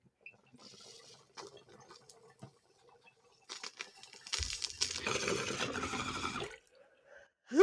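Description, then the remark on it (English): Soft clicks and faint rustling lead into a bong hit: a steady, rough gurgle of bubbling water rising in intensity for about three seconds, then cutting off before a brief loud burst. “No, that was my first rip of the day.”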